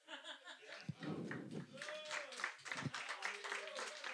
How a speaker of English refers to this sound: Guys, I actually hope you fucking cheated and you feel really bad about that applause.